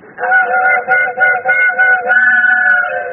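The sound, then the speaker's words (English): A loud, chord-like train whistle sounds alone, giving a run of short wavering hoots before settling into one longer, steady blast with a faint low hum beneath. “Gee, they changed the whistle on the train just for me.”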